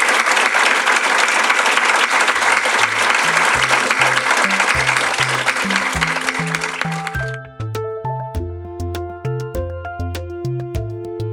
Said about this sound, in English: Brian Christian, Tom Griffiths, and the book is The Algorithms to Live By, Computer Science for Human Decisions. But could we have a tremendous round of applause for these two people?